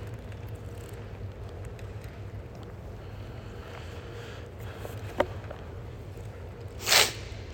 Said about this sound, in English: Sorry, it's a rude sniff.